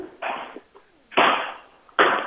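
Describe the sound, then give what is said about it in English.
A basketball is dribbled in a steady rhythm while the person walks in the door and up to a register, three loud, thudding bounces about a second apart, each with a brief noisy tail, and no voices. “I'm trying to see how long I can keep this basketball going.”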